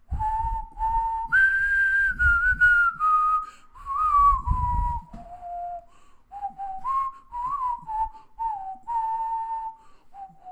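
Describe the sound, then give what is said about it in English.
A person whistles a Disney song melody, a clear tune of sustained and gliding notes with short breaks between phrases, with no talking. “Disney whistled.”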